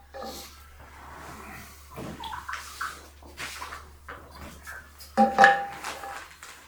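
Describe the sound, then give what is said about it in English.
Someone takes a quiet sip of water, with soft slurping, swallowing and breaths over a low steady hum, then a louder gulp or cup knock near the end. “I don't know, I'm giving you a lot to think about, but let me take a little sip of water here, give you time to think.”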